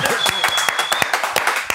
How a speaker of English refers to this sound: The claps are getting smaller by the weeks. We're losing agents. We're losing teammates.